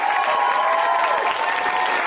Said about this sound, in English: But I have no way of knowing whether or not you were coerced. Except for your clapping. Right now, for the comics that are backstage, they can hear you.